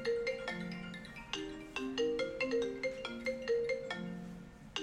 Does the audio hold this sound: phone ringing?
yes